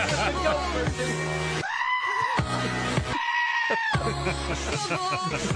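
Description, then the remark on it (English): Goat bleats edited to follow a song's melody, loud and close over a steady musical backing, with wavering held cries rising and falling in pitch across several phrases. “If there's a goat version of a song, I always want to know where it's at.”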